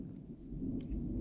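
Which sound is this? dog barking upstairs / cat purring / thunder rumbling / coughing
thunder rumbling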